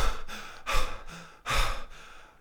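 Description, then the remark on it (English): Heavy breathing: two loud, breathy exhalations with quieter inhales between them, labored and uneven like someone out of breath. No talking. “And so they finally get to the staircase, and they're breathing heavily.”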